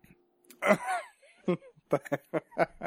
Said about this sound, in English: Hold on, I got to clear my throat.